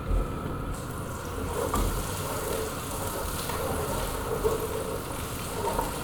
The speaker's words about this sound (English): Once the onions started sizzling, you need to add the meat. So we're not going to let them brown, the onions. We're just going to have them start sizzling.